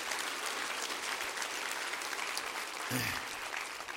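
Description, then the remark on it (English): A church crowd in Austin applauds steadily for a welcomed guest for several seconds, dense overlapping claps at a fairly loud, even level, with a brief voice or cheer rising near the end. “Would you give him a hand clap?”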